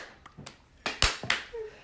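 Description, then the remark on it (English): A few slow, deliberate hand claps ring out, about three sharp smacks spaced roughly a third of a second apart, with a faint murmur in the background. “Okay, hold on. Slow clap.”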